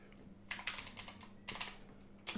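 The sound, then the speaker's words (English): Rapid clicking of computer keyboard keys as someone types into Excel, in uneven bursts, with clusters of quick keystrokes separated by brief pauses, fairly quiet over a low steady hum, no voices. “You literally have a phone. You could have just typed this in. Yeah, but it's easier if it's on my computer.”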